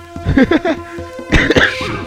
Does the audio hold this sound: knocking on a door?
no